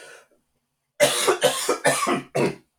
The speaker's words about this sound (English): You're 22 minutes in, and that's the first cough. Considering you've got COVID, you've done that.